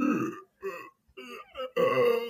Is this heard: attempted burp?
yes